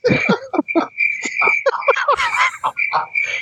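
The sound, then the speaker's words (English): Crickets chirp in a steady, high trill while frog-like croaks pulse rapidly over it, a dense night-chorus sound effect with no voices. “Hey, who let my crickets loose?”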